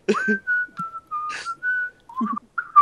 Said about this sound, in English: If you whistle, you can hear the echo.